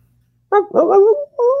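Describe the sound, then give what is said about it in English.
A coyote or wolf lets out a quick run of wavering, yipping howls, three bursts in about a second, loud, with no talking around it. “And I'm like, I'm no zoologist, but that kind of sounds like a coyote or a wolf.”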